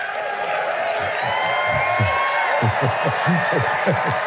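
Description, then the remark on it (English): A crowd of people claps and shouts together in loud praise, a loud, steady wash of applause with voices calling out and cheering over it for several seconds. “Praise that comes by way of two things, and that's clapping and shouting.”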